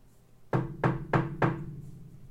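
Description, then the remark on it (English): Four firm knocks on the wooden door of apartment C12 in Building C, two floors up, in an even rhythm, clear, each with a dull resonant thud, followed by quiet. “I knocked on the door.”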